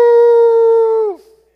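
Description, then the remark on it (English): A person howls like a wolf in a football team huddle underneath a stadium before running onto the field: one loud, sustained, steady note held for about a second before its pitch sags and trails off, with no other voices. “You ever had anybody howl in church, Pastor?”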